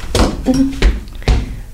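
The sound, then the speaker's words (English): Three heavy, dull thumps of buttocks slapping while someone twerks in a twerk-off, landing at an uneven rhythm with a brief vocal sound between the first two. “Listen to those cheeks thump.”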